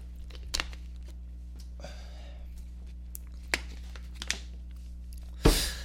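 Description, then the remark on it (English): Someone fetches and drinks a glass of water: a few sharp clicks and clunks, a brief rustle of handling, then a louder clatter at the end, all over a steady low hum with no talking. “Let me get some water.”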